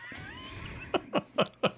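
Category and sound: animal, cat yowling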